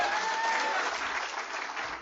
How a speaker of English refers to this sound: I want her to stand up. I want you to give her the greatest round of applause.